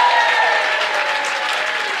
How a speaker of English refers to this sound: because we're going to give you a round of applause, a special round of applause.